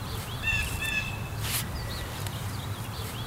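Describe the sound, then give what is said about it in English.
A blue jay that has just flown down from a tree to a bush calls several times in quick succession, its clear, ringing notes carrying over a steady outdoor hiss. “DJ calling, actually. You can hear it calling.”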